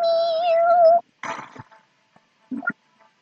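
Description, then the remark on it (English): A long, steady, drawn-out meow, followed by a short rough mew and a couple of brief chirpy meows, with quiet gaps between them. “Meow.”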